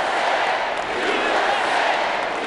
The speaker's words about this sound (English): So during his speech, there were some Bernie protesters chanting, no more war. Yeah. And they were shouted down by chants of USA.